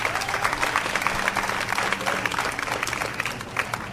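A large crowd at a campus rally in California against racism claps and cheers steadily for several seconds, a dense, loud wash of overlapping hand claps with a faint murmur of voices underneath.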